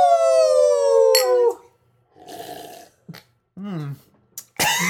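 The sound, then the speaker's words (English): A drawn-out falling vocal tone gives way to sputtering, throaty bursts and a few sharp coughs, with a wavering voiced sound in between, as someone chokes briefly on beer that went slightly down the wrong tube. “Just slightly down the wrong tube.”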